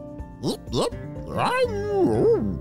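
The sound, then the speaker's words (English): A narrator imitates the dog Peppy barking with two quick, sharp voiced yaps followed by a longer, sliding whiny bark, fairly loud with no other sounds around it. “Barked Peppy as he took a big lick at Isaac's sandy face.”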